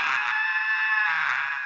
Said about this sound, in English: From behind him, he hears an ear-splitting scream that makes him turn around.